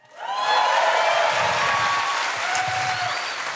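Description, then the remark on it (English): An audience at a Daily Wire event breaks into sustained applause after the announcement of its first investigative journalists, a dense wash of clapping that swells quickly and holds steady, with a few faint whistles and cheers rising above it. “It's kind of you, but nobody claps for investigative journalists.”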